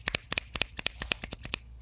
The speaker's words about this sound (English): That didn't sound too bad. Is that a thing? I don't know. It sounded like we were both golf clapping, though.